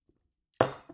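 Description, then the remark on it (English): A single bright clink of shot glasses touching in a toast, a sharp hit followed by a high, shimmering ring that fades over a moment, after near silence. “Let's take this shot. I'm gonna cheers it.”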